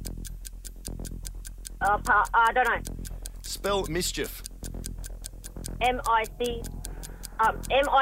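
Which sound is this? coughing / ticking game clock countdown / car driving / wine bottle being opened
ticking game clock countdown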